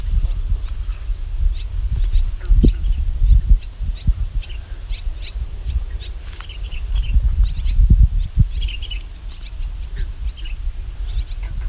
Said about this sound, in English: Yeah, I just hear a lot of barn swallows.